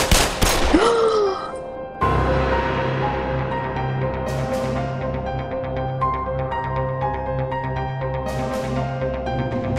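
Scattered gunshots crack out every few seconds with a reverberant quality, following an opening noisy burst and set against a continuous low droning hum.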